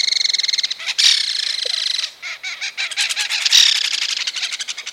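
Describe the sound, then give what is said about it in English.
A belted kingfisher's loud, dry rattling chatter call, delivered in fast bursts of harsh clicking notes that run almost continuously, clear with no other sounds around it. “A lot of times you will actually hear the bird, and if you're lucky, you'll see it. But it has like a interesting like chatter call.”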